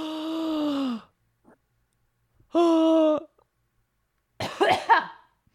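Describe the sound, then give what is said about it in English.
Two drawn-out voiced groans with short pauses between them, then a harsh cough bursting out in a quick double hack before it fades into silence. “I just coughed, but that's not the name of my video game.”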